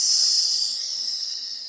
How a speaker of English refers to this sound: And then I'm going to say exhale. And you can use a hiss like this.